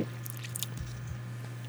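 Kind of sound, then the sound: food or drink, slurping a drink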